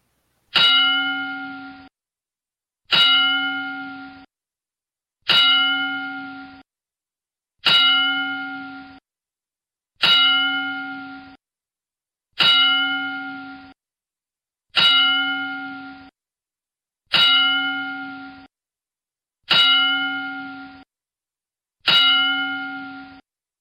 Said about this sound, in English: So, without further ado, we're going to take a moment here and give a 10 bell salute to Road Warrior Animal.